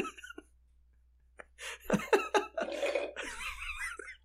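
A loud, wet slurp of coffee at 9 p.m.: a few short sucking bursts build into a longer, noisy drawn-in sip with a wavering whistle-like edge, heard on its own without talk.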